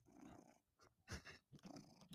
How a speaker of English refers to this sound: Can you hear him purring? We do.